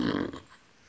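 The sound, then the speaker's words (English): A voice makes a short, buzzy raspberry imitating a fart, loud for a fraction of a second before trailing off into quiet room noise. “It farts? On a face.”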